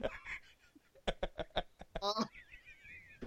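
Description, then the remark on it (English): A voice imitates the cartoon duck Donald Duck, producing a rapid series of raspy, nasal quacking bursts, ending in a higher warbling squawk. “Oh, what do you think, Donald Duck?”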